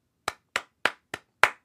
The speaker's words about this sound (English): I'll say some words, and your job is to clap back the rhythm of those words using your clapping hands. So for example, if I say, it's a starry night, you would go.